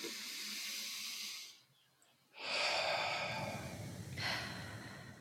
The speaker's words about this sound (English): So first breath, breathing in, I breathe for me. You just take a nice breath in. I breathe for me.